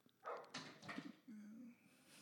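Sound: dog barking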